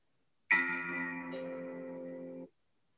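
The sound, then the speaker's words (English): A phone ringtone plays a short melodic phrase of a theme tune, about two seconds long, with bright sustained electronic tones shifting pitch once midway, heard alone before cutting off abruptly. “This is my ringtone.”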